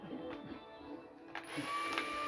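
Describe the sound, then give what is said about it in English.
A motorized tool hums and whirs steadily, consistent with an electric drill running, with a faint high whine and a few brief bursts of rising intensity. No one speaks. “Put the drill away! No, the dog was calm. Why? No, turn it off!”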